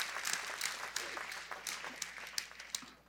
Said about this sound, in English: Totally healed. Yeah, you can clap for that. That'd be a good time to do that.